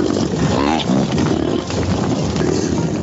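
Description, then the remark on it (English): A sound effect of a large buffalo herd stampeding: a dense, thundering rumble, loud and continuous, with heavy low pounding and animal bellows rising through the churning noise. “One of my favorite sound effects we have here with the Colorado Buffaloes and the Buffaloes stampeding away.”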